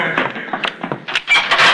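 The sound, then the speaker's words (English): A heavy metal jail cell door clangs shut, followed by a loud rattling clank of the lock catching, with sharp metallic ringing in the last half second. “Oh, I locked that door, blacksmith.”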